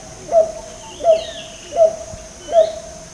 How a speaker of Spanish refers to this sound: Pero solo hay una especie que puede, literalmente, meter a sus polluelos en un bolsillo debajo de sus alas y llevarlas hasta un lugar seguro. Se trata del avesol de Centro y Sudamérica.